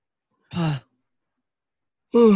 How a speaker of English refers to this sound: Well, we're all both right, yawning. This is pathetic.